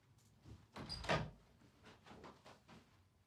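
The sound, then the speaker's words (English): A door swings open with a broad rattling clunk, then closes, followed by a few softer knocks and shuffles. No one speaks. “So yeah, I'll go and get him at the door.”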